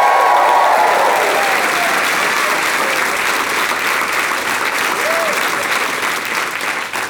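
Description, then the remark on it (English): An audience applauds loudly and steadily for about seven seconds for a friend of the performer who is in the audience, a dense wash of clapping with a few faint whoops rising above it before it starts to thin at the end. “A round of applause for her, just for nothing.”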